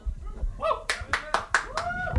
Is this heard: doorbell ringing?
no